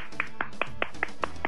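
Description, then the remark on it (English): Steady clapping, seven sharp claps in an even rhythm about five per second, moderately loud over a faint background murmur, with no clear cheering standing out. “And the crowd goes wild.”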